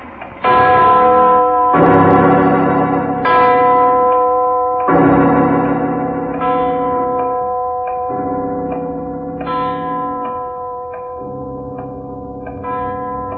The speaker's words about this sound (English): It's the clock winding up. That giant bell's gonna... Get down those stairs. Fast. He'll strike.